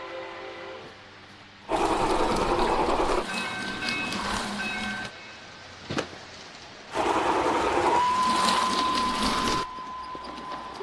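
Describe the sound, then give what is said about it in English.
A small Blue Comet toy train whirs and rattles along its track, its motor humming steadily, intercut with louder, rushing stretches of clattering train noise that start and stop abruptly. No one speaks. “So we get a beautifully cut sequence between the train, the toy train, and the toy shop”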